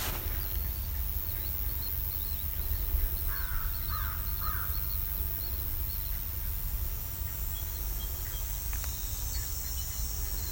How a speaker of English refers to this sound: An American crow.